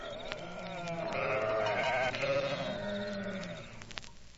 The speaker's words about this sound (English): Out there in the hills, shepherds were keeping watch over their flocks of sheep that night.